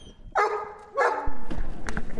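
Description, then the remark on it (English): An excited big dog at a circus performers' space lets out two loud, yelping barks about half a second apart, followed by light clicks and shuffling sounds. “Hey, big dog.”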